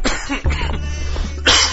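A person coughs several times, harsh, with a final forceful burst at the end and no talking.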